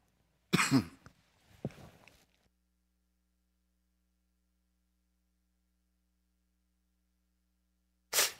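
A close, sharp sniffle followed by a softer second one, then a long stretch of silence before another brief breathy sniff at the very end.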